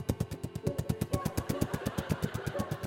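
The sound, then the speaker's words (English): A voice imitates a police helicopter with a steady, rapid chopping 'wop-wop' rhythm of about eight beats per second, fairly loud for a few seconds without any words. “Police helicopter.”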